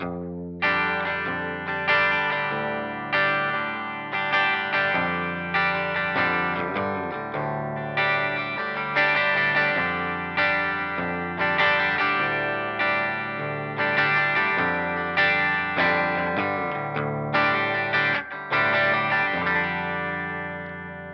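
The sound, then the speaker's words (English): An early-1990s Telecaster electric guitar with Voodoo 52 pickups, run through a compressor into an Iridium amp modeler on its deluxe reverb setting with 2x10 cabinet, plus a fast chorus pedal with wow and flutter fully up, plays a steady run of shimmering strummed chords, each ringing into the next, clean, no voices. “Getting subtle amounts of modulation coming from the chorus pedal because I have it on a pretty fast delay, and then I have the wow and flutter all the way up.”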